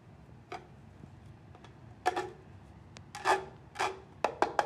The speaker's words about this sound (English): I just made a drum out of Legos.